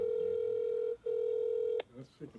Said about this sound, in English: Well, folks, we're gonna try our first call out. We're gonna see if … will pick up the phone. …, the famous songwriter from Waycross, Georgia.